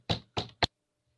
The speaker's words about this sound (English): 45 minutes later, I hear a knock on the door.